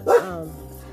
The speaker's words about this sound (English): Talking to my dog, y'all. Another dog walked by and she done lost her mind.